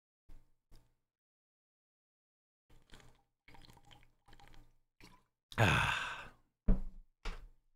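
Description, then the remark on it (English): Someone drinks water: a few soft gulps and swallows in short bursts, then a loud, breathy sigh of satisfaction, followed by a couple more quick sips. “Trying to drink more water.”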